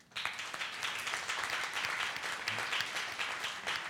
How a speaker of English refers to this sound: And this round of applause is for you.